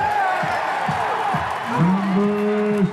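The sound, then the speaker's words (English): A large crowd at Great American Ballpark roars steadily during the 2015 Home Run Derby as the hometown player comes up to bat, a dense wall of cheering with long rising whoops and shouts cutting through, loud and continuous from start to finish. “This crowd is unbelievable.”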